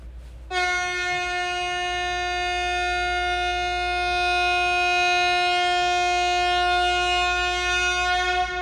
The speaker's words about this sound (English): Happy birthday, everybody. That was my big honk to all the birthday people.